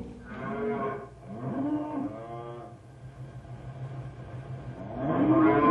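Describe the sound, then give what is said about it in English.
Several cattle of a large herd moo in overlapping, drawn-out calls, with a steady low rumble underneath; the lowing comes in waves, the loudest one at the end. “Rough work, one man riding herd on this many cattle.”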